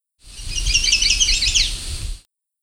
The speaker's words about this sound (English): This was the Chestnut-Sided Warbler.